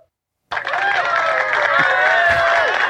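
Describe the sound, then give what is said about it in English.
A live crowd erupts after a brief silence into loud, sustained cheering, the long drawn-out voices blending into something that sounds like booing, continuing steadily to the end. “I felt almost like you were getting booed for a second.”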